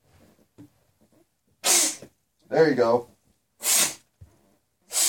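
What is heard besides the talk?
blowing nose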